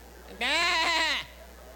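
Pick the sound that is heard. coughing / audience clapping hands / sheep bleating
sheep bleating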